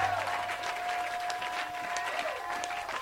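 An audience in a church claps steadily in a dense, continuous wash of applause, with a sustained tone and faint voices beneath the clapping throughout.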